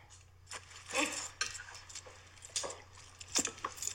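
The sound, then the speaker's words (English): Metallic jingling and clinking of keys in bursts, bright, with sharp rattles scattered over a few seconds and a faint low hum underneath. “Keys.”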